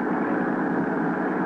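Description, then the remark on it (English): A speedboat engine roars at full throttle as the boat, launched from a ship, tears across the ocean in pursuit of a cruiser, a loud, steady, dense drone with a throbbing low rumble and a rushing hiss over it, with no voices. “Then 6, 8, 10 minutes later, however long it took to get the speedboat overside, the first mate and I were tearing across the ocean in pursuit of the cruiser.”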